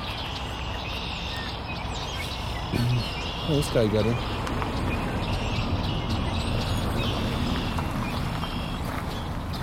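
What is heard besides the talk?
red-winged blackbirds calling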